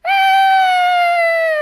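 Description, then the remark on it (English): A single loud, shrill scream, released from a stored scream canister as it hits the floor, held steadily for over a second, its pitch sagging slightly toward the end, with nothing else around it. “It held the record-breaking scream Dean Hardscrabble had collected in her scaring days. The canister hit the floor.”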